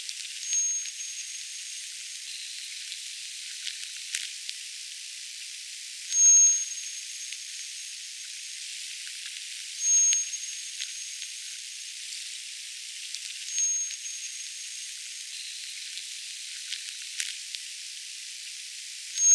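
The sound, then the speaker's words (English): Mid-range military sonar recorded underwater during the NATO exercise Joint Warrior, held around the Hebridean Seas and other coastal locations in Scotland: short, high, tonal pings repeating roughly every three to four seconds over a constant, loud, sizzling hiss, with no voices. “Mid-range military sonar, recorded during the NATO exercise Joint Warrior, which takes place around the Hebridean Seas and other coastal locations in Scotland twice a year.”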